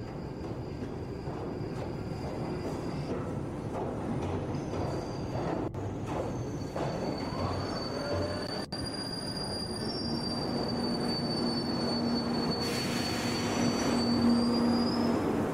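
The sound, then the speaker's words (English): London Underground Northern Line train wheels squeal continuously with high-pitched metallic whines over a loud, steady rumble of rolling carriages, the screech rising and shifting pitch as the train moves along the track. “This time on Macabre London, we're looking into Trains, Pain and Underground Squeals, the Northern Line edition.”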